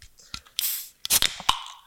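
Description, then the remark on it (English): A Liquid Death can's tab cracks open with a sharp pop and a brief fizzing hiss, then a second Liquid Death can cracks and hisses, ending with a single crisp click. No voices. “Then we open our liquid deaths.”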